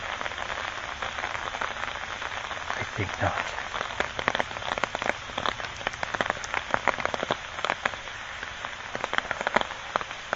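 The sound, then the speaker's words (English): Steady rain patters densely on a surface while someone walks outdoors in it, with sharp drips and taps scattered through a constant wash. A voice briefly speaks over the downpour. “I also haven't needed to walk in the rain for a long time.”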